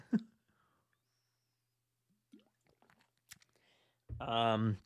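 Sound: sipping a drink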